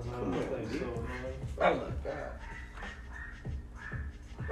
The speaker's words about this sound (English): That's what it always takes. This dog yapping in the back.